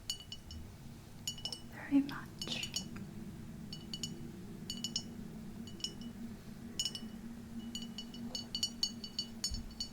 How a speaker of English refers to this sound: It's lemon flavor, like this. And I like this kind of glass bottle sound.